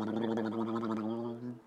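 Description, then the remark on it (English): A person shakes their face so their lips flap, making a continuous voiced, fluttering blubber at a steady low pitch for under two seconds, used like a drum roll, with no words. “That was just me shaking my face.”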